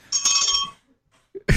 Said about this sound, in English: a good daggone bell, man.